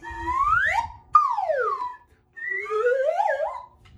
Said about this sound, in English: The traditional slide whistle that happens in a lot of Broadway shows.